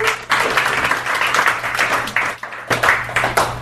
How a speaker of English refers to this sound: But anyway, is there any Dana Kirkpatrick fans out there? She's the only lady in NASCAR. Let's give her a big round of applause, everybody.